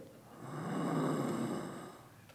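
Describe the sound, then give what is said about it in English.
A single slow, rasping breath of an injured man swells and fades over about two seconds, faint, with a strained, labored quality and no voices. “He's breathing.”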